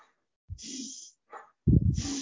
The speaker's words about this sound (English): You can time yourself and see how long you can hold your breath for. You do some belly breathing in and out.